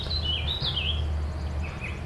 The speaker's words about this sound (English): Warbling vireos.